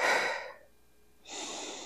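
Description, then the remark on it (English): A slow, deep breath drawn in, a brief pause, then a long exhale, airy with no talking. “And then I focus on my breath and I'll even say in my head, like, in, out.”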